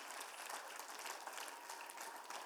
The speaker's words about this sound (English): Can we just give God one more hand clap of praise for that this morning?